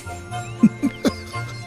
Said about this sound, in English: Listen to those sleigh bells slaying.